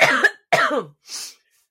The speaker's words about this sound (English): And then me interrupting you with a coughing fit, and you vomiting in disgust, just to top it.